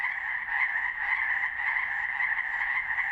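A dense, continuous chorus of chorus frogs calling at once in a forest after dark, a steady trilling din with overlapping pulses that never pauses, fairly loud, with no voices present.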